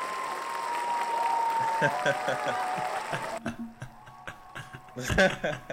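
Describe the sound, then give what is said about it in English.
A crowd cheering sound effect roars at a steady, loud level for a few seconds, then cuts off abruptly as voices start talking over quieter background noise. “Damn, we both got the crowd cheer sound.”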